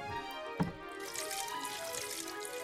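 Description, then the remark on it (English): Water runs steadily into a bowl, a continuous splashing trickle with a brief clink near the start, moderately loud with no voices. “A bowl full of water.”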